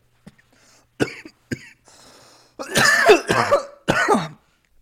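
A few short, sharp coughs, then a louder, harsher run of three raspy hacking coughs in quick succession, a coughing fit after a hit from a bubbler bong. No one speaks.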